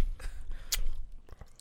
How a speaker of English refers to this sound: It's only the right side of my mouth because I was chewing it on the right side of my mouth.